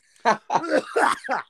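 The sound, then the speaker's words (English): A rapid fit of harsh, raspy coughing from a COVID cough: about five rough bursts in quick succession, loud and strained, each one breaking off into a throaty, voiced rasp. “Just a little COVID cough.”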